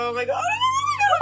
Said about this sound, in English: Oh my god. I just died. Did you just die? Yes, is why I just screamed, I just died.